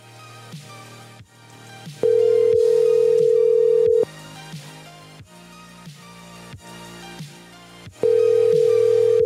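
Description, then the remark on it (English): A phone's outgoing ringback tone on a call placed from his daughter's number purrs twice, each steady two-second ring separated by a long pause, sounding loud over quieter background music. “It's going to keep ringing because he's not going to block his daughter's number.”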